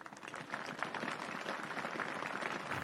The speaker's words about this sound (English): Tepid applause.